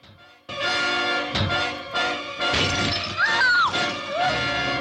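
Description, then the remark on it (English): In an early George Romero zombie film, a zombie picks up a brick and throws it into a car's passenger side window: a sudden loud crash of breaking glass, followed by several more harsh crunching bursts and tinkling shards over a few seconds. “So he pauses, looks around on the ground, finds a brick, picks it up and chucks it into the passenger side window.”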